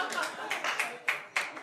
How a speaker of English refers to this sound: Keep clapping.